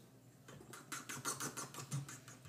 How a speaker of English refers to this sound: There's a bubbling sound.